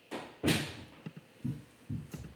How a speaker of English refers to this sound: And there goes the door to my office so my dog can come in. Speaking of interruption. Hey, can you shut that door for us? Thanks, Chief.